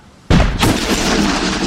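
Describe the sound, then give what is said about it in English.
A carronade, a ship's single forward-facing cannon, fires with a sudden heavy blast after a moment of quiet, followed by a sharp crack and a long, dense roar of rumbling noise that keeps going without fading. “It is time to fire the carronade at the front of the Thorn and blow our entryway into the stern of this ATC ship.”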